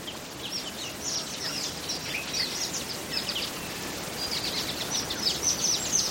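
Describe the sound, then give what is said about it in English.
Dawn birdsong along the tree-lined bank of the River Mara in Kenya: many high, quick chirps and short whistled calls from several birds overlap throughout, set against a steady, moderately loud hiss of background noise. No one speaks. “Chris Watson recorded this dawn setting along the river's tree-lined bank.”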